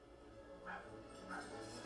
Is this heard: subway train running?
no